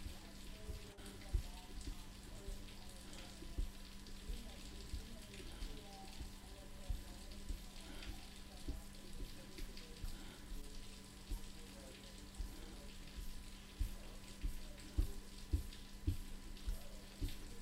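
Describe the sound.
Steady rain patters on a hard surface in a dense, continuous crackle, with a low hum and faint, indistinct voices murmuring beneath the downpour.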